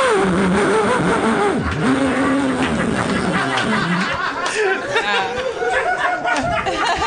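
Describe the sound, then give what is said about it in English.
A voice imitates a chainsaw, acted out after imitations of a vacuum cleaner and an electric can opener: a loud, continuous buzzing drone that revs up and down in pitch for several seconds, with faint laughter and chatter underneath. “Chainsaw.”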